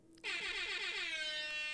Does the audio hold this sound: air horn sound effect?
yes